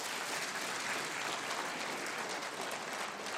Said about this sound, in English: But you know what? All of our kids are in here. Can we give our kids a big round of applause?